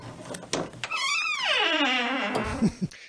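A few sharp latch clicks, then a door swings open with a long, drawn-out creak that slides downward in pitch, ending in a couple of soft thumps. Fairly loud, with no voices.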